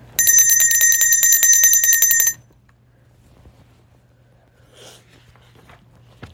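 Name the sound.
bell ringing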